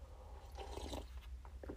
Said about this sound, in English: I'm sipping some yak right now. Getting ready.